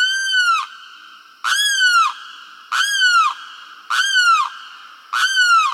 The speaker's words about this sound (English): It's a wading bird called a limpkin. Tall, brown, long-beaked, its eerie cry is unmistakable.